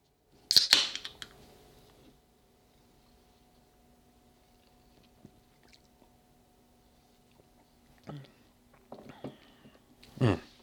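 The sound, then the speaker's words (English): Someone takes a sip of a Coke: a short fizzy, crackly burst, a long quiet stretch over a faint hum, then wet slurping and swallowing sounds near the end. “Now, excuse me while I get a sip off my Coke here.”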